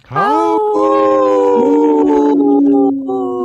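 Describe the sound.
On Native Roots Radio, a person imitates a wolf, giving one long, loud howl that swoops upward at the start and then holds a steady, wavering note for about three seconds before trailing off.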